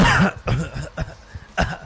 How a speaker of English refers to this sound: Okay, now, that's a perfect example of when the workers start to get out of hand. And what are they doing, faking coughing?